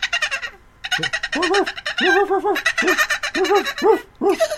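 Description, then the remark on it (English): A voice imitates dolphin chatter: a loud, rapid run of about seven arching, squeaky squeals mixed with raspy, hissing bursts, with short breaks between them. “Dolphin noise, dolphin noise.”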